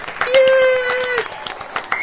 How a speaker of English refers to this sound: Yeah! Rapturous applause. Adrian Peterson, congratulations on being our MVP for the 2012 season.